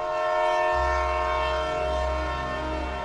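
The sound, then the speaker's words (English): A freight train's horn blares loud and steady the whole time, a sustained chord over a deep rolling rumble of heavy cars passing, with no voices. “I eventually started hopping trains, which wasn't always safe.”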